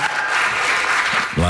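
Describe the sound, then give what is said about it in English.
A studio audience claps steadily in a dense, continuous round of applause for the show's board operator, loud, with a voice starting to speak over it right at the end. “I think we could do a better round of applause”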